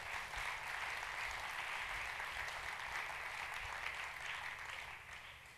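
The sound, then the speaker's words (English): Sustained applause from a crowd at Bayshore, applauding the young families there, a dense steady wash of many hands clapping at an even loudness that tapers slightly at the end, with no voices heard over it. “And can I just take a second and applaud young families that are here at Bayshore?”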